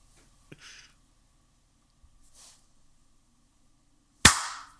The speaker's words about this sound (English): Okay, that was hilarious. Three claps in a row and we'll never figure it out.